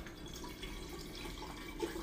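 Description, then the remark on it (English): Fresh water runs steadily from a tap into a tea kettle, a continuous hissing, splashing stream with no pauses. It is fairly quiet, and no one speaks. “So you're gonna hear my tea kettle in a minute. So again, I'm grabbing fresh water.”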